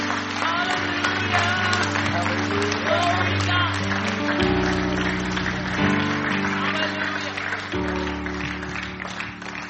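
An audience claps steadily for about ten seconds, a dense, continuous patter of many hands over sustained organ chords that shift pitch, with scattered voices mixed in.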